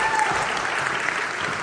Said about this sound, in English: Let's give a round of applause to our worship team this morning.